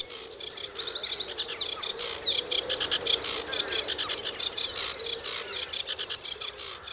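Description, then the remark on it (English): A sedge warbler sings a fast, continuous stream of rattly, scratchy phrases mixed with thin whistles, fairly loud, with a steady insect-like buzz beneath and no voices. “and as they get more and more excited, they work their way up until they're right on the top of the stage, singing away like crazy with a mixture of rattly, scrapey sounds that are really quite hard on the ear.”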